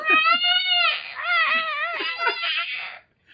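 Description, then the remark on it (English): A voice imitates a tiger cub's roar with a loud, high-pitched, squealing wail that wavers up and down in a few drawn-out, whiny bursts over about three seconds. “These tigers had not gone through that phase yet, so when they roared, it just kind of sounded like...”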